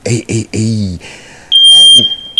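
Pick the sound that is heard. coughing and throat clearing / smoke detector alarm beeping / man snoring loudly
smoke detector alarm beeping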